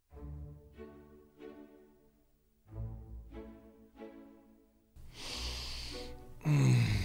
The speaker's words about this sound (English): Man, this Dr. Bean coffee smells so delicious. Hey, don't forget the sniffing.